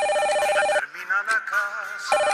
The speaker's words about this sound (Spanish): ¡Ay, la gran qué sonadera de teléfono, hermano! ¡Sí! Ya ni comer lo dejan a uno.